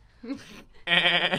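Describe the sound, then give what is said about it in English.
A person imitates a goat with a short nasal warble, then a louder, sustained quavering bleat with a strong buzzy tremolo, heard alone. “Do it one more time. Do the goat one.”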